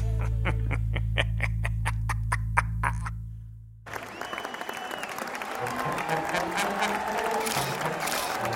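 crowd applauding and cheering

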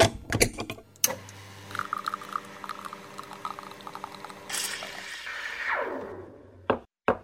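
espresso machine brewing

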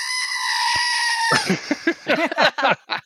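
screaming goat sound effect

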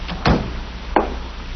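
door opening

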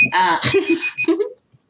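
timer alarm going off

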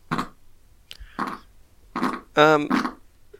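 farting noise

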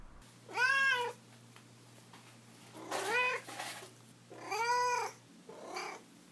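cat meowing

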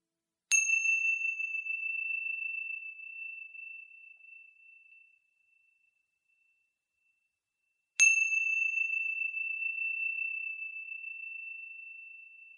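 meditation chime ringing

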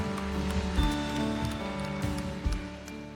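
audience clapping hands

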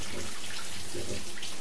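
shower water running

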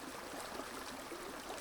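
flowing river water

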